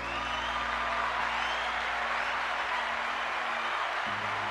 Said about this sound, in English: Round of applause for the Most High for awakening people like myself up.